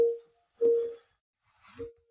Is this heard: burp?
no